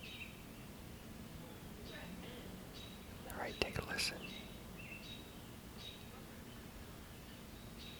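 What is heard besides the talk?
birds chirping outdoors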